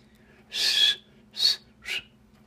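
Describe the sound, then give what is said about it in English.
Three short, breathy blows of air with only a faint whistled tone in them, like someone trying and mostly failing to whistle. The first is longest, then two quicker puffs, fairly quiet. “I can't whistle. Well, I can whistle, but I can't whistle on some parts of my mouth.”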